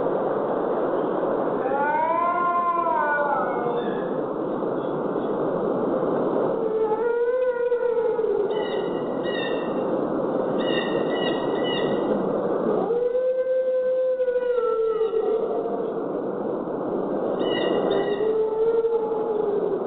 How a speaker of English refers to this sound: And as creepy as that sounds, that was actually a dog making that noise. Yeah, I was going to say the howling definitely sounded canine. It's a very upset dog.